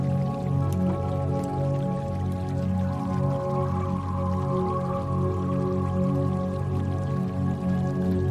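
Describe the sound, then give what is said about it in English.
Steady flowing river water rushes continuously with small drips and gurgles, blended with a sustained low tonal drone that holds at an even, fairly loud level throughout. “The speed of the water begins to pick up.”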